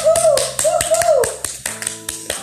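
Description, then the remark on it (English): Steady, rhythmic clapping, sharp claps at an even brisk pace for a couple of seconds, with a wordless, wavering voice-like tone sounding beneath the first half. This is a morning round of applause for a woman being introduced. “Let's give it to her one time for the one time with a big round clap of applause”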